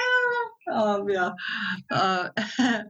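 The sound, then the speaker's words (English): A cat meows repeatedly and insistently, a run of about five drawn-out, tonal cries with only brief pauses between them. “Your cat agrees. And the cat agrees.”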